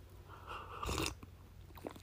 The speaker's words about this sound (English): All right, I'm just gonna take a quick sip of coffee here, guys.